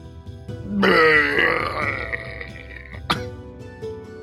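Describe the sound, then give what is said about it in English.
A person vocally imitates a drunk character vomiting a slow dribble of bright blue, bioluminescent vomit, with a long, wet, gurgling retch that swells loudly and trails off, followed by a short sharp hack. “A slow dribble of bright blue vomit.”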